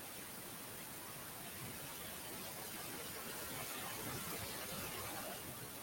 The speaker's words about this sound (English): If you tuned in, you saw a crazy person throwing headphones. I'm not sure what he did. Now I'm getting static from it.